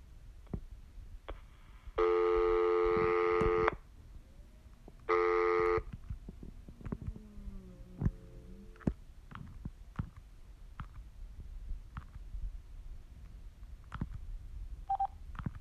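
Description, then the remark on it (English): A phone call-waiting beep from an incoming spam call from a toll-free number sounds twice, a long harsh electronic tone followed by a shorter one, loud, with scattered clicks and faint rustling between them. “Toll-free number was like a spam caller beeped in, but it wouldn't let me like cut them off.”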